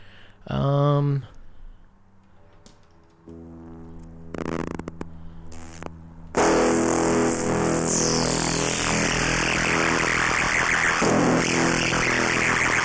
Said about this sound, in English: So let's just get one last distortion going. This one's going to be real nasty.